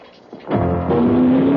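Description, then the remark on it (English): The aluminum, fuel-injected engine of an Alfa Romeo sports car roars to life after a brief quiet moment, then revs hard with a steadily rising pitch as the car accelerates, loud. “Why drive a car when you can drive a legend for under $7,000?”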